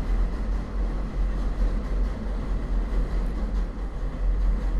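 A train rumbles steadily past, a deep, continuous roar with a faint rattling hiss on top that holds at the same fairly loud level throughout, with no voices.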